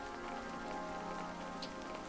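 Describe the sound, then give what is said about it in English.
Steady rain patters on a hard surface, a dense, continuous hiss of drops with no voices, holding an even level throughout. “April showers bring May flowers. But really, they just bring rain.”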